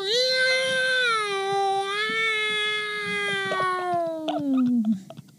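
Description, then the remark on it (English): A person voices the Night Watcher worm, a creature in a story, as a wailing, hungry cat: one long, loud, drawn-out yowl that holds steady and then slides lower at the end, with a few faint clicks in the background. “Night Watcher worm wails like an angry, hungry kitty cat.”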